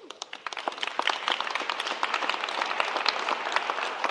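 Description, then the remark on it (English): A crowd applauds steadily, many hands clapping in a dense, overlapping patter that builds slightly and holds for several seconds. “See, you guys are taking up my time by clapping like that, okay?”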